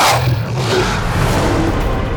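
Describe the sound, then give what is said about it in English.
An enormous she-wolf snarls loudly as it lunges from the darkness of a cellar, a harsh, rasping growl held steady for a couple of seconds with a deep rumbling undertone. “From behind them, an enormous she-wolf lunged from the darkness, red eyes glowing.”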